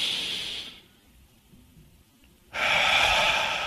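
A deep, slow breath drawn in, a brief pause of quiet, then a long, steady, airy exhale, as deep, controlled breathing to slow down. No talking.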